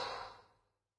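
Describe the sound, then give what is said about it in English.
A single soft breath pushed out through the mouth during a breathing exercise, after a full breath in through the nose, like blowing out a candle; strongest at the start and fading steadily into silence within about a second, airy with no voices. “Full breath in, expand, take a beat, And release and let go.”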